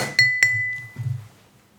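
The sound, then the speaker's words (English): Two bright glass clinks ring out in quick succession, clear, each leaving a short high ringing tail, followed by a softer low thud as the glasses settle. “Well, cheers. Cheers. Cheers.”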